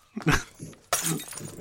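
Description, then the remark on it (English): A short rough, growl-like burst, then a sudden loud crash of a glass bottle shattering during a fight, its bright splintering noise ringing on for a moment. “try and duck the glass that's flying through the air.”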